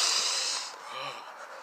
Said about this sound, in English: Can aliens breathe? What do you think I'm doing now? I'm addicted. As soon as I got to Earth, I started breathing. It's amazing.